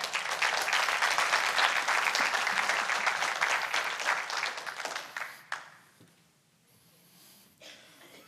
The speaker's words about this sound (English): I think that was good. I think that needs a clap.